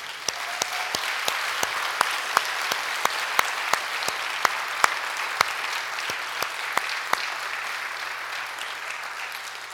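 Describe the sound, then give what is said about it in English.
A church audience bursts into sustained applause for couples married at least 60 years, many hands clapping in a dense, steady wash with a few sharper claps standing out, continuing unbroken for about ten seconds with no voices. “Just give them applause.”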